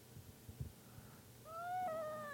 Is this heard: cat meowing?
yes